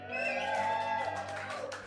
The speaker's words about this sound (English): We're back at River City Brewing in Spokane. Can we prove that we're live? If anybody's listening, would they be able to offer up a slight dose of applause?